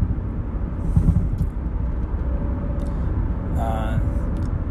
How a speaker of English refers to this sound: Here driving in Red Deer